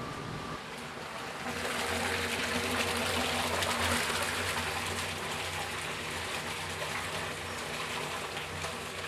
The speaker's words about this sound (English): And I'm going to put another 100 liters of water in, what we call the batcher. And what it does, it batches 100 liters of water into the pot, hot water.